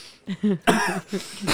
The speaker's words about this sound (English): Don't cough. Don't cough. It makes it worse.